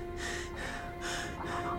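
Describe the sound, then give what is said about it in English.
Repeated sharp sniffs through the nose from a man looking at the ground, three quick bursts of air in a steady rhythm with a low steady hum underneath and no talking. “sniffs, looking to the ground.”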